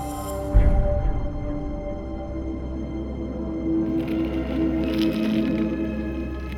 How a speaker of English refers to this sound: The unrelenting nudibranch cuts away at the sea pen with its bony beak. With each penetrating bite, it pulls away fleshy morsels.